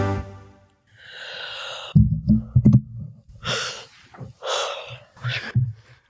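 A woman's close-up yawn into a microphone that was moved in to catch it: a long, breathy intake of air followed by low, groaning vocal sounds, then several more airy exhalations trailing off, with no talking.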